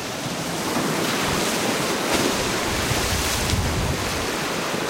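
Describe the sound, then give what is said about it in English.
Heavy storm surf roars continuously at Shishmaref during a fall storm, a dense wash of crashing waves pounding the beach and bluffs, with wind gusting to 60 miles an hour buffeting the microphone and occasional sharper surges breaking through. “I watch the waves devour the beach and begin pounding the bluffs, cutting deep notches into the base.”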